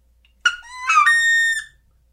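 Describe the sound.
A person imitates the call of a sitting wood duck: a single high, squealing whistle that sweeps upward and holds a bright, harmonic-rich tone for over a second before cutting off, heard alone.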